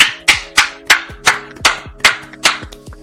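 Steady clapping, about nine sharp claps at an even, brisk rhythm, each a loud crisp slap that decays quickly over a faint steady hum, with no voices.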